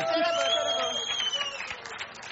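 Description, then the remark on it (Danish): An audience claps steadily, the applause continuous for a couple of seconds, with voices calling out and chattering over it. “Vi er ved med at klappe.”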